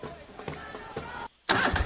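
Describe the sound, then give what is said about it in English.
An Exmark lawn mower engine turns over in a few rhythmic sputtering pulses, goes briefly silent, then catches and bursts into a loud, steady roar. “A proven machine to reduce your mowing time?”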